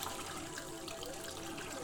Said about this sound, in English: I'll just spoon some pellets into my glass. Add some water.